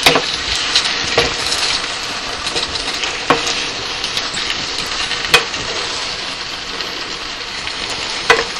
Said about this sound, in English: And I continued stirring, making sure that the sauce was coating everything and turning it down so that nothing was getting overly done.